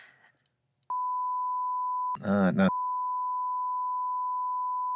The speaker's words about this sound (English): So the beep could be. So it's immediately going to, like, when I, like, promote this, people are going to be immediately turned off. I'm like, I am not listening to a podcast, just a bunch of beeps.